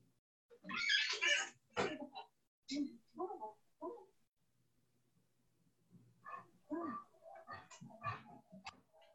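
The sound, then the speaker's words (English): A dog barks and whines in a series of short, uneven bursts, with a brief pause in the middle before a second flurry of yaps; an old dog, about 13 years old, barking to be let back inside. “I'm sorry, my dog's barking, he wants to get it back in now.”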